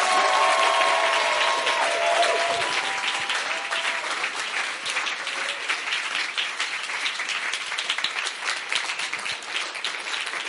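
A large audience stands and claps their hands as a clap offering to the Lord, in sustained, dense applause that is loud and steady throughout, with faint cheers or voices mixed in near the start.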